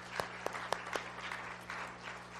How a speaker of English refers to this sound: Come on, give Jesus a big hand clap.